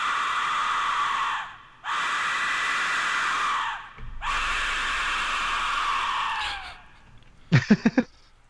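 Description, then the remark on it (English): A death whistle shrieks in three long, harsh, scream-like blasts, each trailing off, followed by a quick flurry of short, sharp bursts. No one speaks over it. “So this is the death whistle.”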